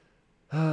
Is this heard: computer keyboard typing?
no